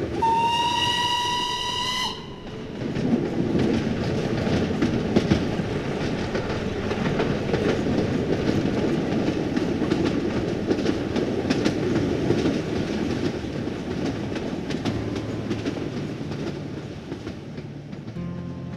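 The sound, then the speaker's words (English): A steam locomotive, the number 638 engine operated by Casey Jones, sounds its whistle for about two seconds, then gives way to a loud, steady rumble of the engine running on the rails, with rhythmic chuffing and clattering wheels throughout. “He then operated the number 638 engine until February of 1900, when he was transferred from Jackson to Memphis, Tennessee, for his most prestigious job yet.”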